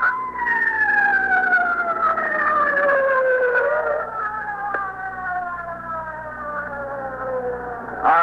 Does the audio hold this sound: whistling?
no